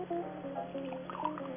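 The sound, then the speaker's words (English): A bartender pours a drink into a glass in one steady stream, its gurgling tone climbing in pitch as the glass fills, with a low hum underneath. “Set him up for old time's sake. All right, stop breaking my heart. I'll pour”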